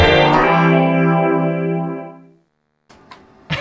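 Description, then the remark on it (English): A loud, heavily processed tone on a CITR radio station ID, smeared by real tape echo, swells and slowly decays over about two seconds, then silence, followed by a few short, clattery bursts. “Real tape echo. This is what people look for in a station ID.”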